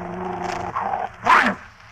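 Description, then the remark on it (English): A bloodhound growls low and steadily, breaking into two sharp barks, the second louder and harsher, with no talking. “That's a nice name, and you're a bloodhound, are you?”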